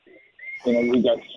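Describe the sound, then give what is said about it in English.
A bird calls outdoors on a patio in Florida, where a bird is building a nest: a faint, thin chirp followed by a louder, throaty, croaking call lasting about half a second, with no talking. “Are you feeding the birds in Florida?”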